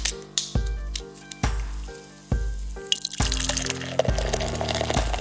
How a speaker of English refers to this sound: I just poured another pint of Day Glow Vibes by the hardworking folks over at Mast Landing Brewing Company. This is a double dry hopped, double India Pale Ale brewed with four different kinds of hops.